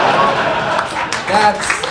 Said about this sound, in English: Yes, thank you for the applause. Thank you for the applause. I deserve applause for every joke, so.